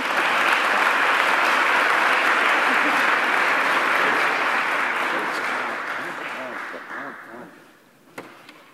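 audience applause welcoming speaker

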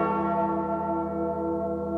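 bell ringing sound effect

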